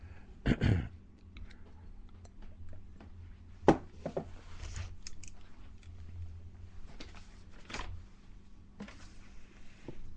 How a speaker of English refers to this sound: So just stand by here in a minute while I get another drink of water.